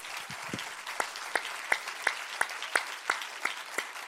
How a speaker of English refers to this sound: But I'm referring today to the total family of volunteers at Atlanta West, the 342 people who serve in 780 volunteer roles at Atlanta West. Would you give them a giant round of applause right now?